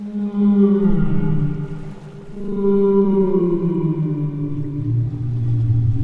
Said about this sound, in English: When they're not eating, blue whales love to chat. Let's try to talk like a blue whale. Listen carefully.